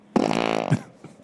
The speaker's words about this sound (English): The fart catcher did not work.